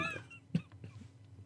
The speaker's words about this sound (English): That was a bad... Are you all right, dude? Yes. That was a pretty bad cough you had there.